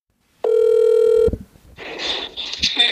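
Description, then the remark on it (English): A loud, steady electronic phone tone sounds for nearly a second and cuts off abruptly, followed by a softer buzzy, crackling line noise, like a voice-only phone call being dialed and connecting. “We started texting and then had a phone call. Just via voice to save electricity and internet.”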